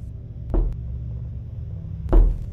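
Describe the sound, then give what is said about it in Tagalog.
Two slow, heavy knocks of a fist on a wooden door, spaced well over a second apart, each a dull low thud with a short resonant ring, against a faint steady background hum. “Parang dibilang ang bawat pagtatama ng kanyang kamao sa dekahoy kong pintuan.”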